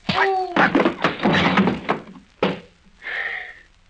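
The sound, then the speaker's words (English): A scuffle of bumps and shuffling ends in a heavy, loud thud as a man is knocked out and drops hard onto the floor, followed by a brief rustle. “Hey, he landed kind of hard, sir.”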